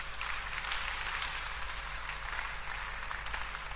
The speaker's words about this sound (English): Can you clap again for Peter just a little?